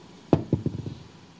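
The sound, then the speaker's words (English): The destiny dice are rolled onto a table in a tabletop role-playing game, landing on a 6: a sharp first hit followed by a quick series of smaller bouncing clicks that fade as they settle, with no talking. “Can I have the destiny dice? You can make a destiny roll.”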